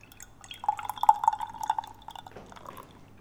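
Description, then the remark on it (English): A 7.1% extra stout beer is poured into a glass, a steady trickling stream with a faint rising tone as the glass fills, tapering off into a few quieter drips. No one speaks. “Victory is mine, and we're going to start off with the extra stout.”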